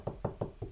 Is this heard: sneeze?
no